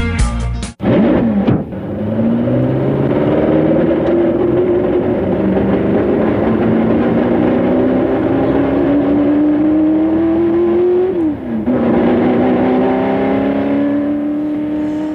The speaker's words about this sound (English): yeah, I like that sound effect. That was a Ford GT40. That's nice. Although that's probably one of the very, very, very, very few that I borrowed from somebody else.